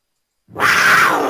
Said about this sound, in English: Oh, whoa. That's now, a good one. Now that was a Cougar.